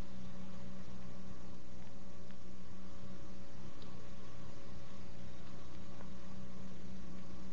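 A steady, muffled rumble of street traffic by Lord Nelson's column during a blackout, with a sustained air raid siren tone holding evenly beneath it throughout, no voices, and no sharp events standing out.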